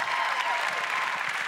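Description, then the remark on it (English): A Wednesday night church crowd claps and shouts together in a dense, steady burst of applause, with raised voices cheering through the clapping at an even, loud level throughout. “Can I get a shout down from this Wednesday night crowd, please?”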